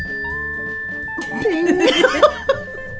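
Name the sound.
chime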